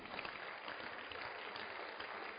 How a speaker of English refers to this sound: Praise the Lord. A round of applause for Jesus.